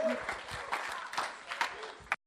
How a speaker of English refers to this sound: Well done, you. How good, eh? Let's give her another round of applause, eh?